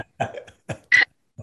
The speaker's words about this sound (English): sorry, and there's coughing going upstairs, everyone's ill. COVID, just whatever.